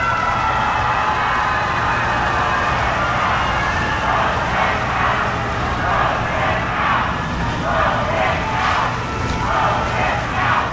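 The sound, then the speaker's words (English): A loud crowd of mourners waiting in line at the Supreme Court to pay respects to Justice Ruth Bader Ginsburg boos at President Trump's arrival in a steady, roaring wash of voices, and after a few seconds rhythmic chanting rises over it in repeated bursts. “Mourners waiting in line to do the same booed and chanted when they saw the president had arrived.”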